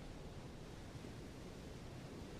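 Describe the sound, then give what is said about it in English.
A steady, hissing wash of ocean surf fills the background, soft and continuous without distinct breaking crashes, like waves lapping at the shoreline. No one speaks. “Take a couple of steps to the water's edge.”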